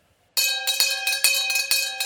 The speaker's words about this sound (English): Oh, it's the end of the interval. I can hear the bell ringing.